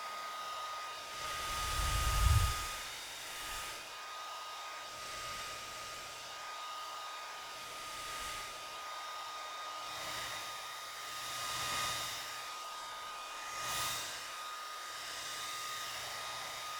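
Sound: hair dryer running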